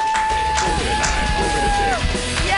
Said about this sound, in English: Yay! Keep clapping